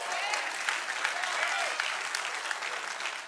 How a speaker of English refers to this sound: So I don't know if you're clapping because I said I was going to listen to God or because I'm going to stop preaching.